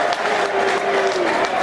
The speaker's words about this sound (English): Good applause for both.